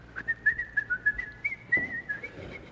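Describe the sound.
Someone whistles a short tune, a string of clear, bright notes hopping up and down in a lively rhythm, steady in volume, with no talking.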